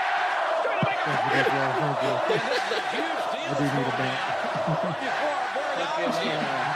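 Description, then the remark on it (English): A large crowd chanting and shouting together, a dense, continuous roar of many overlapping voices that stays steady and fairly loud throughout, like fans filling a stadium. “You think anybody uses a crowd chant as white noise?”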